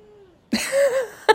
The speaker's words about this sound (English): And my cat will meow grumpily at you if it is not.